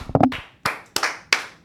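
Loud, sharp handclaps in the EEI studio, clapping it up for Michael Wacha coming off the IL: a quick flurry at the start, then four spaced claps in a slow, uneven rhythm, each crisp and bright, with no talking.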